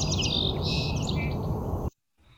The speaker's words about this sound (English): the trill of the song sparrow at the end, it sounds almost like a buzz